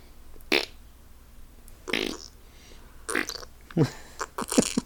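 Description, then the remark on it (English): A person blows a series of wet, sputtering mouth-made fart noises, about five short bursts spaced irregularly, loud, with no speech. “He also farts a lot, right?”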